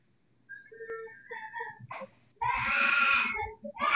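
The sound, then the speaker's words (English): A small child cries in wavering, whimpering sobs that build into a loud, strained wail, then break off and start again, unaccompanied by speech. “I don't deal with little kids crying, you know that.”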